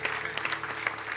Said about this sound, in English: Everyone who raised your hand, come on. Yeah, give them a big round of applause. Thank you, Jesus.